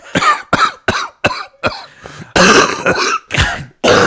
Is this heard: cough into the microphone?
yes